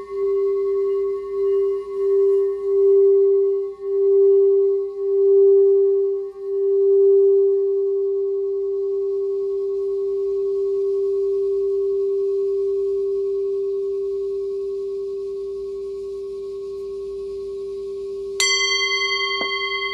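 A crystal singing bowl, used for throat chakra frequency healing, hums one pure, sustained tone that wavers and pulses at first, then settles into a steady ring, until a fresh strike near the end adds a brighter shimmer.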